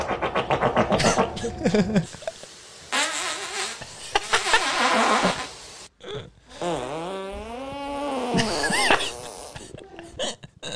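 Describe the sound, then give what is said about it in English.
A string of loud fart sounds, several buzzy, wavering bursts of varying pitch following one another with brief pauses, some long and drawn out, others short and sputtering. “This is only farts. Only farts. That's violent.”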